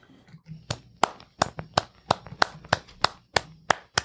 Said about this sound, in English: That's me clapping, by the way. It is. It actually is. Me clapping.